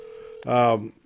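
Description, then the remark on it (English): A steady electronic phone tone hums for a moment, then cuts off as a short burst of a voice takes over. “And we got phones going off here and everything else.”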